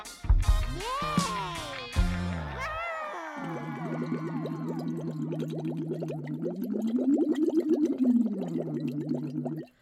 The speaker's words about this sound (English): That's just me and my cup bubbles. Working on my voice.